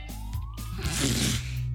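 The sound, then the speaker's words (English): Coyotes howling: a thin, high wail glides slowly upward and wavers, with broad hissy noise swelling midway, all over a steady low hum and no voices. “Coyotes.”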